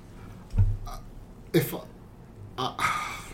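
A loud, sharp sniff bursts out among a few short, breathy throat and nose noises, with a longer hissing inhale near the end. No clear speech is heard.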